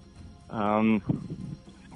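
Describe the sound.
A single loud game show buzzer blares for about half a second during a timed quiz round, a harsh, steady buzz, followed by a voice starting to talk.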